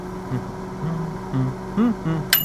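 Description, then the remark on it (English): A steady low appliance hum runs throughout, with a few soft murmurs underneath, then ends with a single short, bright beep as the microwave, set to a preset time in a studio, finishes. “Did you just make something in the microwave, Lisa?”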